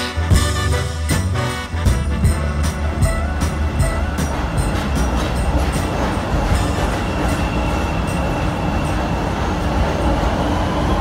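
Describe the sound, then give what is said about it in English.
An elevated subway train rumbles along steadily, a loud continuous roar with rattling wheels and brief metallic clatter early on, at Jackson station. No one speaks. “This is Jackson. Transfer to blue, purple, orange, brown, and pink line trains at Jackson.”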